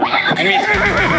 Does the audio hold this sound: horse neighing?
yes